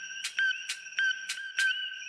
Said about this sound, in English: It's time to hear which frog you loved the most of all the frogs we covered in 2021. Without further ado, the frog of the year is... the Coqui.